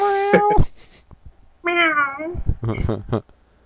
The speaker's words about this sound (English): Meow. Meow. Here come kitty.